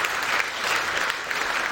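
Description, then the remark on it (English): Steady applause from an audience at a church worship service, a dense, even patter of many hands clapping at once, fairly loud and continuous with no voices over it. “I have three people clapping. That's not good.”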